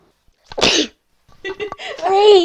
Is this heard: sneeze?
yes